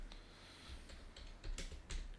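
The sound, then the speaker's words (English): A handful of quick taps on a computer keyboard clicking at an uneven pace, fairly clear, with a few louder strokes toward the end over a low background hum, as someone types a boxer's name to look him up. “I can't see what I'm typing.”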